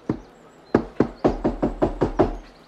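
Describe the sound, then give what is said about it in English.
A series of sharp knocks on a wooden door at a dock area, one early rap then a quick run of about seven evenly spaced knocks, fairly loud, with no voices. “Yeah, I'm gonna knock.”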